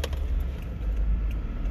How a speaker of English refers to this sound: and you are in the car with me.